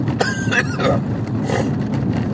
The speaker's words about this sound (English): Oh my God. Sorry. Got a bad cough there for a second.